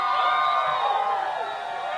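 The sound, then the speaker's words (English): A large crowd cheers and shouts continuously, many overlapping voices and whoops blending into a steady, loud roar for the whole stretch, as at a rally or march. “The crowd wasn't this big. We had a good crowd.”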